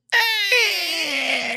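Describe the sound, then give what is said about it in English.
A creaky foley door swings open with a long, loud squeal whose whiny, strained tone slowly slides lower over about a second and a half, with no voices. “Usually a door opens right here.”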